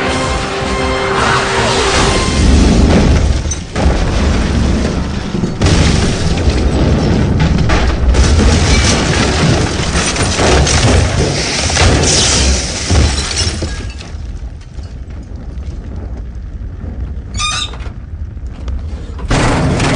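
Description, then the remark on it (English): A jet plane crash-lands with a loud, sustained roar of booming and shattering impacts, then the noise drops to a quieter lingering rumble with a brief metallic ring near the end. “Haven't crashed a jet in, about a month and a half.”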